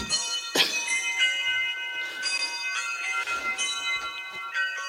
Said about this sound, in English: Yes, because the bells are playing. And those are the real bells.